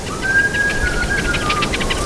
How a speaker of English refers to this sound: So that's the humans whistling to communicate with the birds.